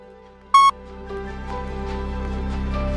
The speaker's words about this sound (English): After the beep, just tell me, good advice, bad advice. Here's the beep.